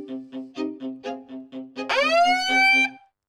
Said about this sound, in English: There we go. There's the siren